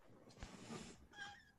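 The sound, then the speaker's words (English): A cat whines in a couple of short, plaintive vocalizations, the second rising with a tonal, nasal quality, against a soft background hiss. “Tom's she doing was cats whining, now? She was whining at me.”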